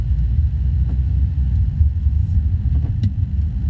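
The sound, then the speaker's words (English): A bus pulls out right in front of a group of people beside a huge parking garage: a deep, steady engine rumble dominates throughout, heavy low-end noise, with faint clicks and wind buffeting on top. “Bus just pulls out and it's just right in front of all these people.”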